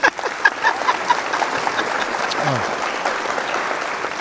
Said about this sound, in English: Cue the applause.